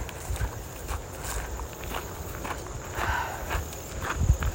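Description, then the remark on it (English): Steady footsteps in new hiking boots being broken in, each step a soft crunching thud repeating at an even walking pace, with no talking over them. “Been trying to break in some new hiking boots and they were definitely rubbing my fucking feet the other day.”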